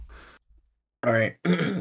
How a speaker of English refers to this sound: All right. Let me clear my throat real quick.